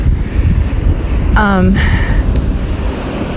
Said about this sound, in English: Let's go over the river. Water's moving. Spring's coming, y'all.